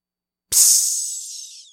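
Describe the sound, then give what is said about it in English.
A sudden, loud hiss as a bumped pot of boiling water hanging over a fire spills onto it, starting with a soft thump and then a bright, sizzling steam rush that slowly fades over about a second as the fire is put out. “But at the same time, someone else bumped into the boiling pot of water hanging over the fire.”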